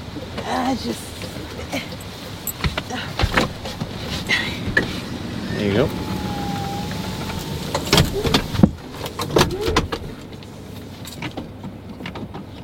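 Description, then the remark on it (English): A car door opens and shuts with a couple of solid thumps amid low vehicle rumble, while people briefly talk. “Oh, I was going to do the other door.”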